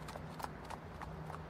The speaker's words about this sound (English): Then the horse and the knight trotted off down Hawthorne Crescent.